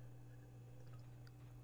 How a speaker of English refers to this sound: Oh, let me get a little drink here.